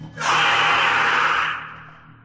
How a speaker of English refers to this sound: To try to out-scream the screamer. Neither I nor Trash know if this thing, if this will hurt it like it would other things, but at the very least, it'll definitely get its attention.